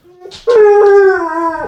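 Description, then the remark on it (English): A female dog lets out a single drawn-out howl, loud, holding a steady wavering pitch for over a second after a brief whiny start. “There's Bailey again. She's telling you need to go.”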